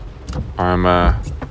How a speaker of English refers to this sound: I'm in my car. This is not the home studio setup. But, I've just left the office. It's fucking pissing rain. Absolutely pissing rain. I've got a flooded road to my left.